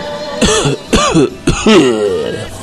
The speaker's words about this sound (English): But the tube, you know, a real man's air that you can get soot, snot, any day of the week. And I'm going to miss that. I'm going to miss the coughing incessantly.